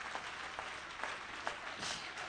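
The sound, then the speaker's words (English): A church audience claps hands together to praise the Lord in a steady, even rhythm, a sharp burst of many hands roughly twice a second, over a continuous wash of crowd clatter and no clear talking. “Clap your hands with me.”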